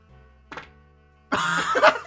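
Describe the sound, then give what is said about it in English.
A fart: a short soft puff, then a louder, longer raspy blast lasting under a second, noisy and buzzy with a sputtering rise at the end, alone over a low steady hum. “I got a fart.”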